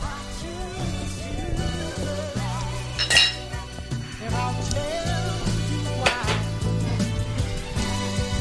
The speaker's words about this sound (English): Let's clink up.